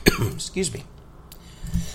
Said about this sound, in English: Excuse me. I had a little bit of a coughing fit there. Didn't want to have you guys listen to me cough.